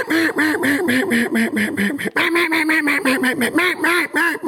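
A rapid, unbroken run of loud nasal quacks from duck calls, close up and steady, with a brief break midway before the quacking resumes. No voices.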